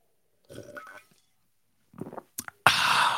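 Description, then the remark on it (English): A few short, wet slurping sips of coffee, then a brief click and a loud, sustained airy slurp that runs to the end, with no talking. “This feels like a sip of the day coming up right here.”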